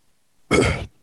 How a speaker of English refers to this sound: Ooh, wow, that was an inadvertent yawn. Yeah, because it's boring.